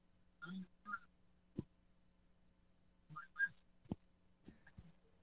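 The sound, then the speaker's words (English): A cell phone call breaking up: brief garbled, chirpy fragments of a voice cut in and out between gaps, with sharp digital clicks and a steady low hum underneath. “your cell phone is cutting you off.”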